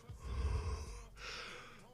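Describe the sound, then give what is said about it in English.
Two heavy, breathy gusts blown right into the microphone to demonstrate breathing: a rumbling exhale followed after a brief pause by a hissier second breath, with no talking. “If you breathing, this is breathing.”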